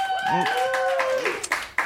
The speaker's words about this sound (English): So, I leave it to you people. With your applause, who wants to hear Ferris Bueller?